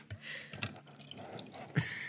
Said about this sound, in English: I don't know if you heard that little pour, but that was another third of a cup of tequila. So I love this. Officially added 2/3 of a cup of tequila.